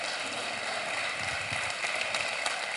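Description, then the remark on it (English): A crowd applauds, a dense, steady wash of many hands clapping at an even level for a few seconds, with no voices standing out above it. “Give these guys a round of applause, will you?”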